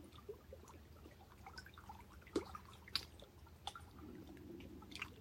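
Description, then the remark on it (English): Soft, irregular drips and wet plinks of water fall at an unhurried pace over a faint low rumble, fairly quiet, with no voices. “And we allow the music of the water to soothe us, sing to us.”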